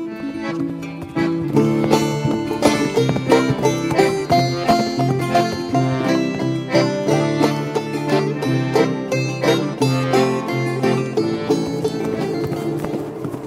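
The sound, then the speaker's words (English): Steady galloping hoofbeats drum along for over ten seconds, loud, layered with a sustained tonal backing, with no talking over them. “Yeah, you're a horse now. You're in trip. Go. Let's ride.”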